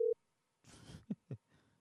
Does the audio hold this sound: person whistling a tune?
no